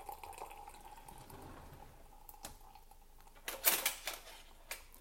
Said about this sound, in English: And when you pour, pour everything at once. There's no need to bloom here. So I'll just pour my 250 milliliters at once.